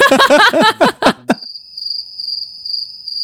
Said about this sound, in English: Cricket sound effect at this moment.